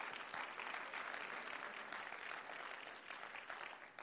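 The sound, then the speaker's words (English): A church audience claps their hands in praise of God, a dense, steady wash of many hands applauding together, sustained without pause and fading slightly at the end. “Come on, let's clap our hands and give a little praise unto God.”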